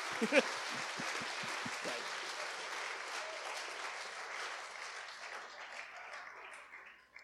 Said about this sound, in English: If you agree, might you briefly, for time's sake, applaud these guys. Thank you.